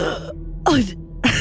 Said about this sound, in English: Mick, upon being healed and revived from the dead, essentially, will let out a large gasp.